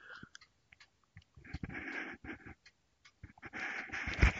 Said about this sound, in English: Sip of coffee if you don't mind.